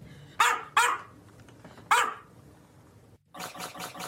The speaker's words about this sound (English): That is how many barks are in this video with this dog. Now, how did this happen? This person who created this video duplicated a video of a dog barking, so I'll play a little bit of that now.